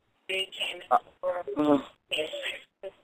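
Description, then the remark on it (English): A caller from the 678 area code speaks over a phone line on speakerphone, thin and band-limited with a boxy quality, in several short bursts separated by brief silences. “Take your phone off speaker, baby girl.”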